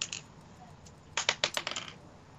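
A twenty-sided die (d20), rolled for an attack roll, clatters across a hard tabletop in a quick burst of sharp clicks and bounces, tapering off after about a second; fairly crisp, with no talking.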